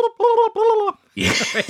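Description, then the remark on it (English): A voice imitates a goose call: three loud, nasal, honk-like bursts in quick succession, then a brief pause and a rough, rattling gargle that sounds more like a turkey's gobble. “That's not what a goose sounds like, is it? That's a turkey.”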